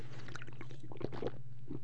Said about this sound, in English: Sorry for slurping there.